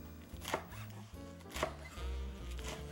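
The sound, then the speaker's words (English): A knife chops green Swiss chard leaves, tough stems removed, on a board into pieces about 2 to 3 inches, a large chiffonade: three crisp, sharp strikes about a second apart, over a steady low musical hum with no talking. “I'm going to take the tough stems out of the green chard leaves and then cut those into about 2 to 3 inch, sort of a large chiffonade.”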